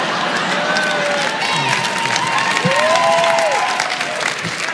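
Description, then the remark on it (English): An audience at a Mitch Hedberg comedy show applauds steadily, with dense clapping that holds at a fairly loud level throughout, and a few scattered whoops and cheers rise above it. “Every time people applaud, I'm always going, no, no, no, hold on.”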